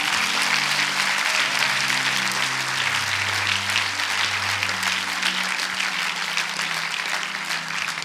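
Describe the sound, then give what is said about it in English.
Sustained applause from a large crowd giving a clap offering, steady and loud for the whole stretch, with a dense wash of clapping and a low hum of voices underneath. “Hey, come on, let's give him a real clap offering.”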